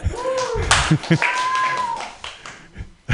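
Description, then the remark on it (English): An audience claps steadily with a dense patter of hands, joined by a few high whistles and scattered cheers, before the applause thins out and a couple of last sharp claps ring out. “If you guys want to keep clapping.”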